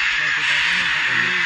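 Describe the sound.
A continuous wash of harsh, raspy macaw screeches, loud and overlapping as if from a flock, with people's voices talking faintly underneath.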